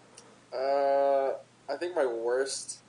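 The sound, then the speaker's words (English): An Arkansas crowd chants the Woo Pig Sooie hog call: a long, sustained whoo that rises and holds, then a short pause and a choppy, sliding shout. It is moderately loud, with no other talking. “Sorry, I can see Arkansas doing the Woo-Pig Suey thing. It's throwing me off.”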